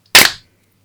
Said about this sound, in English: Right, let's do a clap. On three, everyone clap. Two, one.